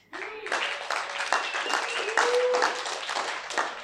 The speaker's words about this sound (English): Thank you, worship team. Or can we give them a clap?